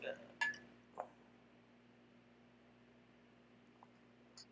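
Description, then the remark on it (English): A couple of bright glass clinks ring out near the start, quick, like glasses touched in a toast, followed by quieter faint taps over a low steady hum. “It's, like, a little crystal in there. I know we're on. Oh, yeah. Let's cheer. Let's cheer.”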